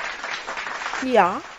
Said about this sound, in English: Okay, so a big applause.